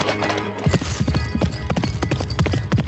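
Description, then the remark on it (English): Fast galloping horse hooves of a ridden horse in an old-school Western-style music video pound in a rapid, driving rhythm, loud, starting abruptly after a brief low hum and continuing steadily to the end. “When you see a black man on a horse going that fast, he's still alive.”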